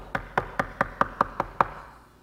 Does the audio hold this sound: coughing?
no